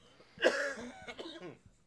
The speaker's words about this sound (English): And sorry, I had to hit the microphone to get that cough out.